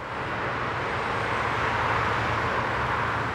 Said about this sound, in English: Over 100,000 cars and trucks thunder across here every day.